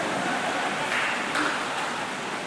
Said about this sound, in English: In many ways, Lord, thank you, Lord, for the rain. Can we acknowledge it? It's loud in here.